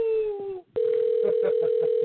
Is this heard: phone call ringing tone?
yes